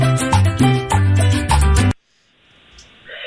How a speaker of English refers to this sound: Okay, it's definitely a Spanish song. Okay. Is it? It's the one about the donkey.